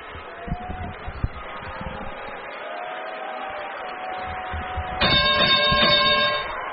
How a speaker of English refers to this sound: Thirty-point bell rings.